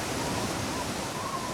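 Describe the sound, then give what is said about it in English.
A steady, rushing roar of churning water, like a swirling whirlpool, holding at an even, full loudness throughout with no breaks or distinct splashes. “It swirled together like a flushing toilet until a massive whirlpool sucked the ships towards it.”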